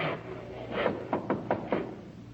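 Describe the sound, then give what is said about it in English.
Knocking on the wooden door of a one-room shanty: one knock followed by a quick series of four sharp raps, clear over a quiet hum. “Come in. I never locked the door.”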